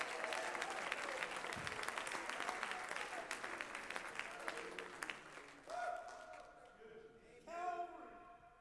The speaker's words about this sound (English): Clap your hands and give God some praise.